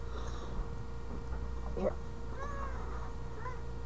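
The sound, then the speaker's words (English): A cat meows a few times, short rising calls over a steady background hum, with faint rustling movement as she gets ready to jump over a laptop. “Okay, she's not jumping. She's a cat. Oh, she is jumping.”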